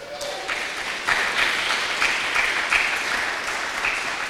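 Polite applause from a church audience, a steady patter of many hands clapping at moderate volume for several seconds, without cheering or whistles.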